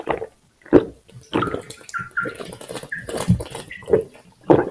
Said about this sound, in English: Wow. That was big gulps, huh? Yep. Nice. Take a liter of cola. What was that you just drank? That was some attack protein.